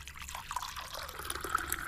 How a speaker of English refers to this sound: Okay, here we go. Let's commence the pour. Okay, just shout stop when you want,